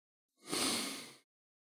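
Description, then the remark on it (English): A single deep inhale through the nose in a studio, breathy, swelling quickly and tapering off over about a second, with no talking. “Breathing in. Smell of the office.”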